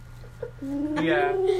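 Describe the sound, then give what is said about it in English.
A person imitates a pigeon's coo with one drawn-out, throaty warbling note that swells and slides slightly upward, loud, after a couple of soft breathy sounds. “There's a bird in here! A bird. I didn't see that pigeon even enter.”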